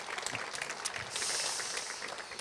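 A church audience in Warsaw applauds as a man takes his seat after a prayer, a dense, steady patter of many hands clapping at once, swelling slightly midway before tapering off.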